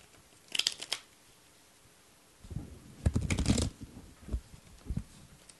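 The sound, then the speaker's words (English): A deck of cards being shuffled: a short riffle burst near the start, then a longer papery flurry of flicks and snaps, ending with a few separate taps as the deck is squared. “Gotta fucking shuffle this shit, man.”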